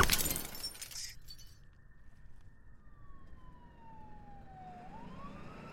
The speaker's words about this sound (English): I'd put a fist through the mirror in rage.